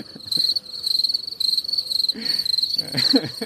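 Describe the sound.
A person imitates cricket chirping: a steady, shrill, pulsing trill held for a few seconds, with a few soft low mouth or breath noises toward the end.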